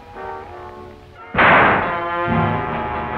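A single loud gunshot from the 1942 noir film This Gun for Hire cracks out over dramatic orchestral film music, its blast ringing and fading for about a second while the music carries on underneath. No one speaks.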